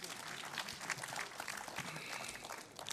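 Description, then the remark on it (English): An audience at a church service claps steadily, a dense patter of many hands that holds at a fairly even level for the full three seconds, with a voice faintly mixed in underneath. “Yes, you can clap for that. You can clap.”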